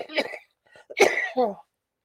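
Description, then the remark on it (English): A person coughs a few times in quick succession, with harsh, breathy bursts and a throaty rasp at the end. “I apologize for the coughing.”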